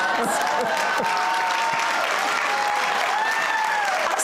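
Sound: studio audience applause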